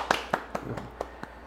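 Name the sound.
hands clapping in applause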